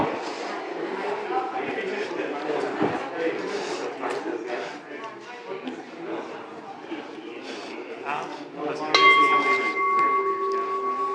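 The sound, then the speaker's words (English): A crowd of people chatters, then near the end a handheld bell rings once, its bright clear tone ringing on and hanging over the voices. “And, you know, in order to make this work, I'll get a bell.”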